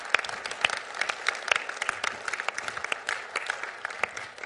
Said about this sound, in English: But if there's anyone else, let's just go ahead and give them a round of applause and be praying for them as well.